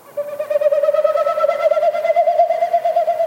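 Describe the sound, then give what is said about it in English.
A male Wilson's snipe's winnowing flight in spring, a territorial sound made as each wingbeat pushes air through its stiff outer tail feathers: a hollow, breathy whistle pulsing rapidly and steadily for about three seconds, holding one mid-high pitch with a slight rise, no voices. “What you heard is a Wilson snipe doing its territorial sound, but it's made with its wings and its tail.”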